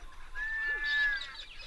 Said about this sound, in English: There are now birds winging back and forth everywhere in the sky. And let's just stop for a minute and listen to a quintessential dawn chorus of eastern Australia.